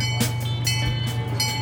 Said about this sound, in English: Well, good afternoon and welcome to the Santa Barbara Zoo Railroad.